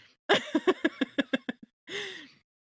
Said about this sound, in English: Can you hear me breathing angrily hard? I hope so.